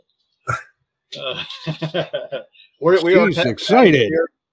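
A dog gives a quick bark, then a run of short yips, and finally long, wavering whimpers and whines, fairly loud, with no one talking.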